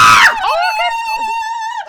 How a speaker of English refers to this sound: Okay, …, I understand why you're mad, but can you please stop screaming for a second because it's way louder on my end and I didn't do anything.